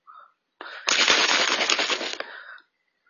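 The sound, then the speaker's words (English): A water bottle is shaken hard for about two seconds, a dense, rapid sloshing rattle that starts abruptly, stays fairly loud and evenly paced, then trails off. No one speaks. “Sorry, I want to fucking shake this water bottle, but I know it's going to be loud.”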